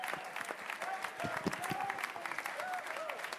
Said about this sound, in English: Let's give a round of applause to all these gentlemen who we look forward to seeing play in the Bronx. And a round of applause for yourselves for making this a wonderful evening.